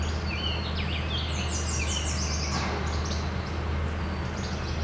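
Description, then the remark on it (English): A yellow warbler sings a series of quick, high, sweet whistled phrases, with other faint chirps mixed in over a steady low rumble of background noise. “Yellow warbler.”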